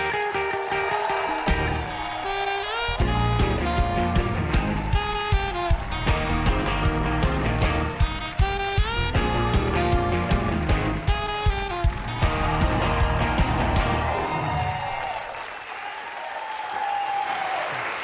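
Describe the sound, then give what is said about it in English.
A crowd bursts into loud, sustained applause with cheering voices mixed in, welcoming two members of a band, holding steady for about fifteen seconds before thinning out toward the end. “I want you to give a big round of applause to the leaders of America's rock and roll band, ….”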